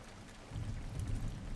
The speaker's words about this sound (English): But she's the one getting rained on.